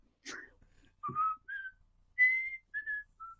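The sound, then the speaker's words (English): A person whistles a short, halting TV theme tune, about six clear notes of varying pitch with brief pauses between them, and no talking. “Can you whistle it?”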